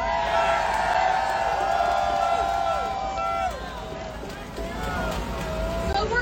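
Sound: outdoor crowd cheering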